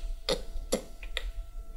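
Three sharp, dry clicks made with the mouth, spaced evenly about half a second apart, over a faint low hum with no talking.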